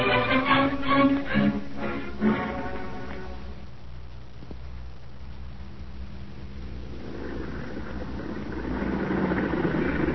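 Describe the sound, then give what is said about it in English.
A car engine idles with a steady low rumble, rougher and more tonal at first, then settling before swelling slightly louder near the end as the car pulls up. “You in that car! Drive on, no stopping here.”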